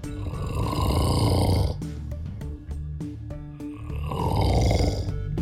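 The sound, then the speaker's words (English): A woman's husband snores loudly in his sleep: two long, rasping, rumbling breaths separated by a brief quieter pause. “she actually sent us a recording of her husband.”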